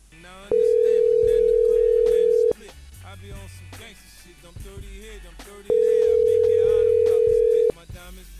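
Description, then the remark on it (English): A phone line rings twice with steady, even tones about two seconds long, separated by a pause, as on an unanswered call, over faint background voices and noise. “No, you pick up the phone, lady.”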